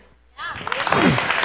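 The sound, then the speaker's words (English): After a brief hush, a church audience breaks into loud, dense clapping during praise, mixed with voices calling out amen and cheering, filling the church for the rest of the moment. “I could focus a little bit more if everyone could stop clapping”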